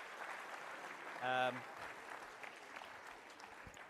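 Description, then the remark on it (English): An audience applauds a volunteer, clapping steadily throughout, a dense, even patter of many hands at moderate loudness, with a short voiced call rising briefly above it near the middle. “Round of applause for my volunteer.”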